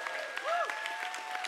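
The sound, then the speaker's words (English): A crowd claps steadily, the many overlapping hand claps forming a dense, lively patter, while sustained musical tones hold underneath with a brief swelling glide. “Come on, let's clap better than that if you believe it today.”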